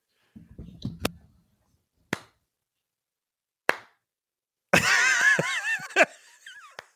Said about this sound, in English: This is a slow clap that builds and builds until the entire classroom is cheering and standing on their desks and saying, Captain, my captain.